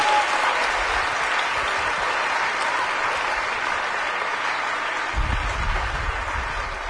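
A round of applause from a crowd, steady dense clapping that holds at an even loud level for several seconds without voices on top.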